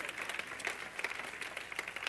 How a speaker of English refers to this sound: Happy New Year, everybody. Is everyone happy? Come on, give them a hand clap for 2014.